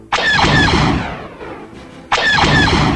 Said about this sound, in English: He squeezes the trigger and the giant laser cannon with a burst of smoke and electrical charge opens up on the enemy craft.